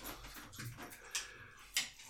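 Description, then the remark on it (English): A dog runs around, letting out a soft whimper, with two sharp clicks, like claws or tags, about half a second apart. “Well, sorry, we're just watching my dog now.”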